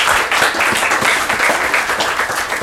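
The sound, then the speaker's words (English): A crowd applauds steadily, many hands clapping at once in a dense, loud wash of sound that holds even throughout, with no voices standing out. “If y'all want to clap for them one more time, we can.”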